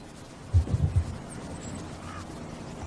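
A short run of three or four quick, raspy quacks from a duck, followed by a steady background hiss with no other sounds.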